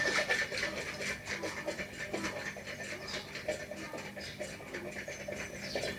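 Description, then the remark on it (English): Hot milk sloshes and churns inside a closed flask mug as it is shaken steadily to froth it for morning coffee, producing a continuous rhythmic, hissing swish with regular pulses for several seconds. “I've started frothing my milk for my morning coffee in one of my flask mugs.”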